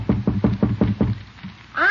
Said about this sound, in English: … is just knocking on his uncle's door, and by the tone of his voice, he's trying to get out of something.